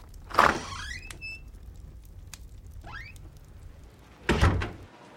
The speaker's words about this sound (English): Bull and Grayson exit through the front door.